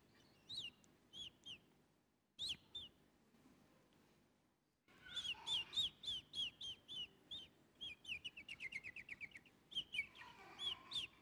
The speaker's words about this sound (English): There's a bird. Did you see it?